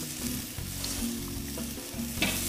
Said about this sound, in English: All right, the grill is hot. It's oiled. It's sizzling.